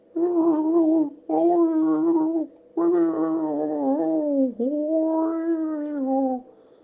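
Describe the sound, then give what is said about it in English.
A person imitates a Basenji dog's whimper: four drawn-out, wavering whiny tones with short pauses between them, fairly loud, with no other sounds. “I can't bark, I'm Basenji, but I can give you a stupid whimper.”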